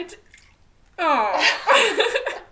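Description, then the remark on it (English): Ouzo pours into a small shot glass with a gurgling, rising ring, lasting about a second and a half, while people laugh and talk over it. “Do you want me to pour? You poured the first one so well.”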